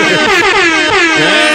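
A loud, blaring air horn blast sounds continuously, layered and brassy with a slight wavering pitch, filling the short moment with no talking.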